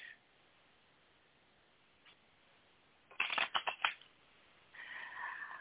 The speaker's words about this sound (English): So let me just lay out some cards. Want to get them good and shuffled? I hear me shuffling in the background. Going to put your energy in it.